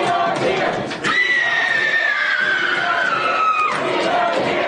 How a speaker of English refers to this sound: Multiple times. Not wearing a mask. She just started screaming like she's being stabbed to death.